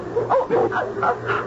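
dogs barking and attacking

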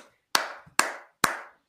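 clapping

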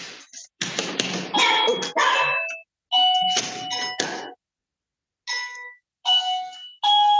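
doorbell ringing

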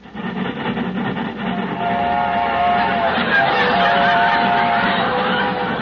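train sound effect

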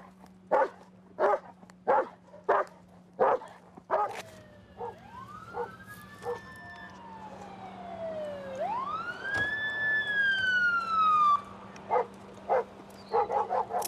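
dog barking

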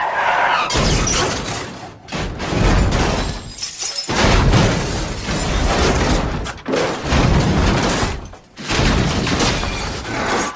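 car crash sound effect

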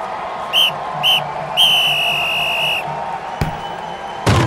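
referee whistle

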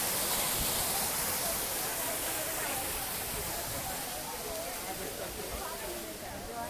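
waterfall rushing

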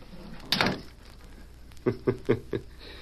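door opening and closing

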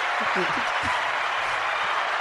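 applause

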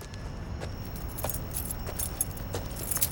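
car keys jangling

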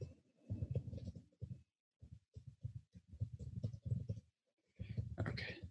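typing on a keyboard

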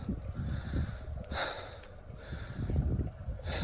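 heavy panting breaths

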